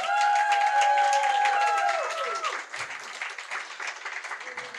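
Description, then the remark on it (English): An audience at a storytelling event applauds a storyteller after her story, a dense patter of many clapping hands with a few whoops and cheers rising over it early on, then the clapping thins and softens toward the end. “Let's give a clap for our people.”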